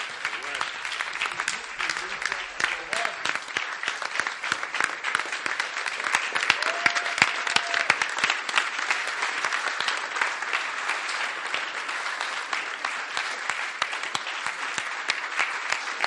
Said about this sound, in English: So days that you don't clap after preaching, what does it mean? The way you're really clapping today, I'm wondering.